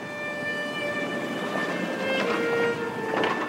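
A train rolls steadily along the rails with a constant rumble, thin metallic whines drifting above it and a couple of brief rattling bursts near the end, on an 8-hour ride from Moscow to the small town of Borovichi. No one speaks.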